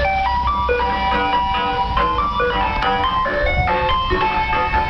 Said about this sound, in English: There was this police officer, though, in Ireland, decided to do the same thing. There was these young people, and they were throwing bottles and ripping apart this Land Rover. He decided to play through his loudspeaker the ice cream truck music.